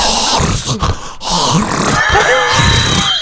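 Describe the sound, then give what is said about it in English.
A voice imitates strained, wheezy breathing with rattling, gurgling catches from a piece of popcorn stuck in the airway while eating popcorn; continuous, with brief gasping breaks. “And now his breathing is interrupted because he's eating the popcorn. Uh-huh. So now you hear this piece of popcorn that's stuck in the pipe.”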